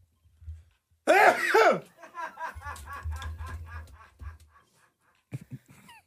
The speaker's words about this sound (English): And then you proceeded to sneeze all over my greeting.